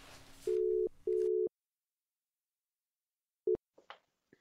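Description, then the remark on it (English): A phone line rings out with a steady, low double-burst ringback tone on an outgoing call to an interviewee. After a pause, a second ring starts but cuts off abruptly, followed by a few faint clicks and rustles as the call connects. “So I thought, I'm going to play the whole thing from when the phone rings.”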